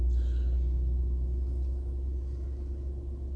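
A livestock truck carrying animals to slaughter rumbles low and steady, its deep drone easing off slightly as it moves along, with no voices present.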